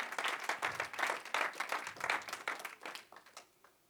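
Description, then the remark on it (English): An audience gives a hand clap of praise as they are being seated, a dense patter of hand claps that holds steady for a few seconds before thinning out and fading as the clapping winds down. “Give him a good hand clap of praise as you're being seated tonight.”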